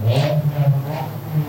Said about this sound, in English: I hear the motorcycle outside.